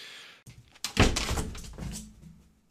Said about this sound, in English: What happened? Did he knock something over? Knock something over?